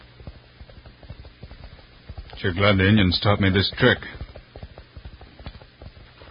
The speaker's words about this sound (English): Yep, there he is. My ear close to the ground, I can hear his horse running. He's closer, and I'm gaining.